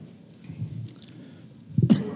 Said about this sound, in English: Got a little cold. I apologize. I'm going to try not to cough.